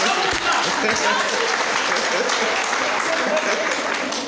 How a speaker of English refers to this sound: Thank you, madam. Please clap for me. Please clap for me.